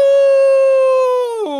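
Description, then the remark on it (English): A voice imitates a big gray wolf yowling in pain after being pricked by a hedgehog's spikes while reaching to catch it: one loud, sustained cry held steady for over a second, then dropping sharply in pitch at the end. “The big gray wolf stretched out his paws to catch Bonny Hedgehog, but he was pricked and yowled loudly.”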